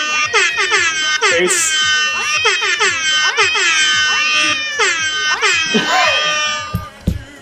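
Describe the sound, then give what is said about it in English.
Loud, repeated cat meows with high, swooping pitch, rising and falling in quick succession over several seconds, overlapping with other wailing, cry-like sounds and ending with a short thump. “Were there that cats in the background at the end?”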